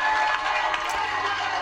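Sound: crowd cheering and clapping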